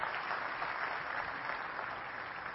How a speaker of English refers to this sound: Hey, give my help a round of applause here. They did great.